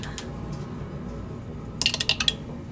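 Dice rolled during a tabletop role-playing game clatter across a hard surface in a quick burst of five or six sharp, bright clicks, preceded by a couple of faint taps over a low, steady background hum.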